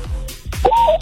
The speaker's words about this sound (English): What was that sound? No. What? That was. Was that an owl? What is that? That was a woo.